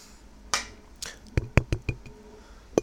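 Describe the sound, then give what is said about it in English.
Two short fizzy, hissing bursts are followed by a quick run of five or six wet gulping swallows, each with a soft low thump, as someone drinks a pink grapefruit seltzer water from Kroger with no talking. “I'm gonna take a drink. ASMR. I'm drinking a pink grapefruit seltzer water from Kroger.”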